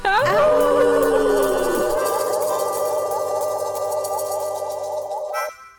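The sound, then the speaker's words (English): Several people howl together like dogs, howling at the Moondog on the Moondog Show radio program: a loud, sustained wail of overlapping voices whose pitch slides down at first, then holds steady for about five seconds before cutting off. “Go ahead and back away from that microphone so you don't scream into it when we howl at the Moondog.”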